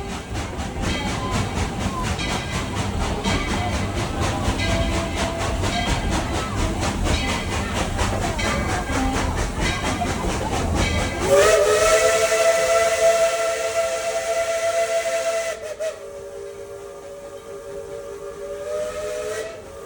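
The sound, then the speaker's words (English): A steam train chugs along with a steady rhythmic rumble, then a loud sustained whistle blows with bright harmonic tones over a broad hiss of steam, fading into a softer hissing whistle. “Just close your eyes and pretend like you're on this thing, just rocking back and forth and lugging along the line.”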